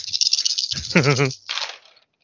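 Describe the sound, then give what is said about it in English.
Dice are rolled, rattling and clattering in a steady bright shaking burst, broken by a short voiced sound from a person, then a second, softer rattle that trails off into silence. “I can re-roll up to 2 of them with my resourceful talent.”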